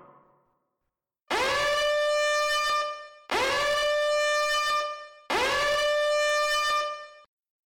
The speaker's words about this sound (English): What's that? An alarm! Oh man, they know we're here!